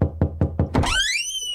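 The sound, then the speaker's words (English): Five quick, firm knocks on a front door in an even rhythm, loud, followed by a warbling electronic tone that sweeps upward and lingers. “This week, I got a knock at my front door.”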